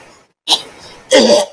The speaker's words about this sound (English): Like coughs up a little bit of blood kinda comes out of him now. I am actually quite healthy, but thank you for the inquiry yet again.